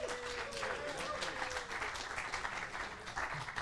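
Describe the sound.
A crowd applauds steadily throughout, a dense wash of many hands clapping at once, fairly loud and close, with a faint murmur of voices mixed in beneath.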